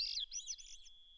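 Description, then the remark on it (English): A thrush in spring sings a single ethereal, fluty, upward whirling phrase that swirls and spirals in repeated loops before settling into a thin, sustained high note, clear with no talking; the bird seems to sing several notes at once, using both sides of its syrinx. “It's signaled by this ethereal, fluty, upward whirling song.”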